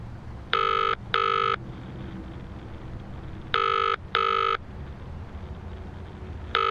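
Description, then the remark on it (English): An outgoing phone call rings in the familiar double-burst pattern: two short electronic tones, a pause, then two more, with a fifth starting at the end, over a low rumbling background. “Let me call Jess.”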